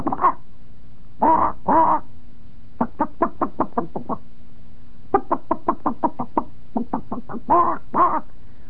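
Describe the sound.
A man's voice imitates a chicken, with rapid runs of short, clipped clucks broken up by a few longer, drawn-out squawks. The clucking is loud and rhythmic, with no other talk.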